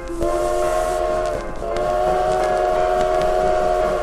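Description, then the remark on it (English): A loud, sustained train whistle blows over the steady rumble of a moving train, briefly dipping before sounding again, with continuous rail noise underneath. “Hey, aren't you a little bit young to be driving the train?”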